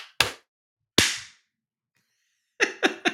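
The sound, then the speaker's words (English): Several people clap together for a clap track on a count of three, in sharp, loud bursts: two single claps about a second apart, a pause, then three quicker claps in a row. No one speaks. “All right, and we're all going to clap together, right?”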